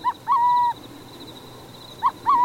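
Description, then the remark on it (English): Burrowing owl calls at a former depot with artificial burrows, each a short clipped note followed by a longer, steady hoot, heard twice, clear over a faint constant high-pitched hum of background noise. “Unlikely as it may seem, this former depot is now a burrowing owl boomtown.”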